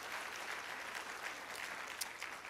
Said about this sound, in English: Oh, can you clap your hands unto the Lord?